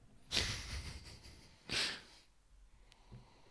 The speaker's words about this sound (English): Guys, can I ask you to do the Swirl test? The swirl test. And then sniff hard. Sniff hard.